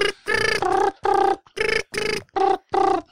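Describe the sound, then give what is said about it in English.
A phone rings with a string of short, bright electronic tone bursts, about seven in quick succession, each pitched slightly differently, with brief gaps between them and no talking, as an outgoing call is placed after a number is dialled. “Just let this ring.”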